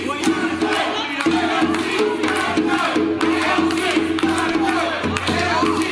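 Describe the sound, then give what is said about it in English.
A rowdy crowd of protesters at an event in the Bronx chants loudly in unison 'AOC has got to go', voices rising and falling in repeated phrases with short breaks, scattered clapping and shouts woven through the dense, continuous roar. “the crowd was rowdy, chanting, AOC has got to go”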